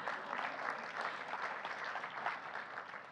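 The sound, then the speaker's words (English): A crowd applauds a five-minute Bible overview in a steady, dense burst of clapping that holds at an even loudness for about three seconds, with no talking over it. “Round of applause. We didn't applaud that man.”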